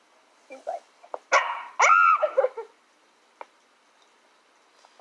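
A dog barks in a short burst of several sharp, loud yelps and whiny barks, followed by quieter scattered sounds and a brief pause.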